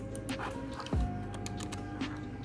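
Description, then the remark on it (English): Soft, irregular clicks of someone typing on a computer keyboard at work, fairly quiet, with a low steady hum behind and one brief falling whoosh partway through. “And I'm at work, so you hear me typing, just don't mind that.”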